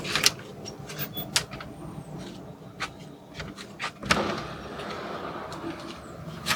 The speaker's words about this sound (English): So we'll head in. We're going to open our screen door here.